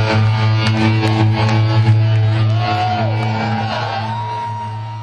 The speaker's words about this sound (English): Now they're gathered up, arm in arm, to take their final bow. And as you hear, this crowd is more than excited. There goes the guys on the stage.